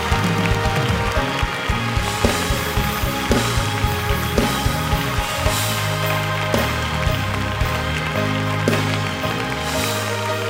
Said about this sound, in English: Now, everybody in this room that's actually a believer, I want you to put your hands together and actually praise God. Like you're glad about somebody giving their life to the Lord. I said, I want you to clap your hands and thank God.